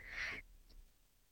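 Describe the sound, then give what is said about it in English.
A single short burp into the microphone after drinking chamomile tea, a quick voiced burst lasting under half a second with a bright, raspy tone, followed by near silence and faint low background noise. “I'm just like burping just into the mic.”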